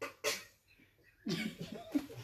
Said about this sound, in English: If you got a cough, go outside and put on a mask. I'm not trying to catch it.